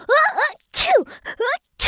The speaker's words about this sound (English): Sparky sneezed again, and two even bigger snot bubbles came out from his nose.